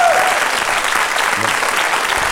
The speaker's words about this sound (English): Well, I tell you what, before the scores, big round of applause for producer